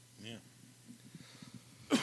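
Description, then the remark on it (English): A single sharp, explosive cough bursts out right at the end, louder than what comes before, following a couple of seconds of quiet, low vocal murmuring and a brief strained voiced sound. “Cough in your elbow, please.”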